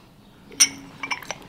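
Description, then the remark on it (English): A porcelain teacup lid clinks against its cup as it is lifted to sniff the tea: one bright, ringing tap followed by a few lighter, quicker clicks as it settles, all fairly quiet with no voices. “All right, I'll let you both just lift up the lid and sniff that.”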